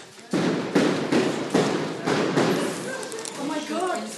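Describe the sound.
Tear gas canisters fired by riot police at close range into a house, ripping holes in its walls, in a rapid series of about six loud, heavy thumps and bangs, followed by muffled voices and commotion as the shots stop.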